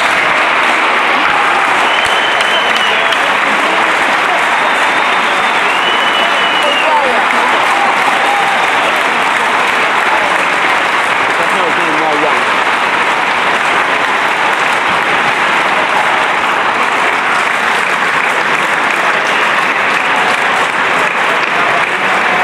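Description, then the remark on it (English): A large stadium crowd at a Tottenham Hotspur game in North London roars and cheers continuously in the rain as the Spurs team comes out onto the pitch, a dense wall of noise with applause and occasional high whistles cutting through, sustained loudly for the whole stretch. “We can hear the reception.”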